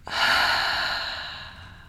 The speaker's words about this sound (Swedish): Vi tar ett djupt andetag, hörni. Andas in genom näsan. Fyll upp bröstkorgen, magen med luft. Och andas ut genom munnen.